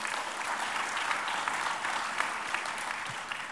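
Steady, sustained applause from an audience for an entire debate panel, a dense patter of many hands clapping at an even loudness throughout, with no voices rising above it.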